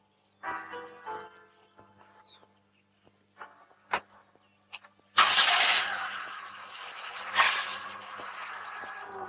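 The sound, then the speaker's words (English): A few clicks and clunks, then a car engine cranks and catches in a closed garage, settling into a loud, steady running roar that revs up briefly before idling on. No one speaks. “You don't want a car in a closed garage.”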